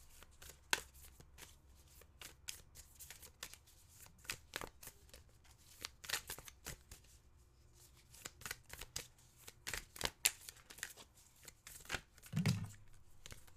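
Tarot cards being shuffled, a steady run of quick papery riffles and soft slaps that continues for over ten seconds, with a short low thump near the end and no one talking.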